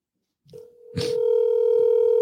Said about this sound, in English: Should I just call him? I feel like it's that kind of situation. Let's just call him. I FaceTimed him.